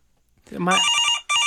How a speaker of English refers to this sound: That's an office phone.